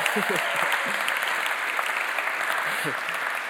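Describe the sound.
An audience gives a steady, dense round of applause for an audience member's birthday. It holds at an even loudness throughout, with a few faint voices calling out beneath the clapping.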